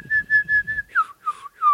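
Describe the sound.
A person whistles a bird-like call: four quick steady notes at one pitch, then three longer notes that swoop downward, clear and moderately loud with no talking.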